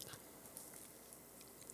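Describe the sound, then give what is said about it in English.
Quiet chewing of cake with crunchy sugar bits, with small irregular crackling bites scattered over a couple of seconds and no talking. “It's just this little crunch.”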